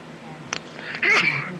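A single loud sneeze: a brief sharp intake followed by an explosive, honking burst lasting about half a second, with no talking over it.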